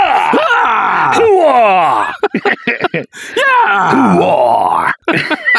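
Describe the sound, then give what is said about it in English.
A person screams loudly into a studio microphone fitted with a compressor limiter, in two long, wavering bursts, the pitch sliding and straining, with a brief choppy break between them and no talking. “We have a compressor limiter, so I can scream as loud as I can.”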